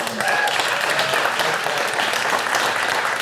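A crowd claps steadily in a dense, continuous wash of applause that stays loud and even for the whole stretch, with no voices rising above it.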